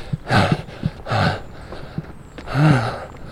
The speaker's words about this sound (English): Warning, this episode contains a lot of heavy breathing.